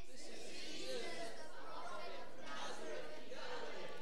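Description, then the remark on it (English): An audience murmurs among themselves, many overlapping voices blending into an indistinct, steady chatter that fills the space without any single clear speaker standing out. “The crowds answered, they're kind of talking to themselves here, this is Jesus, the prophet from Nazareth in Galilee.”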